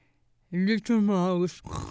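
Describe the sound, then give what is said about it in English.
A voice imitates a pig, making two loud, drawn-out oinking grunts, the second longer than the first, followed by a brief breathy noise. “The rooster left and a pig appeared.”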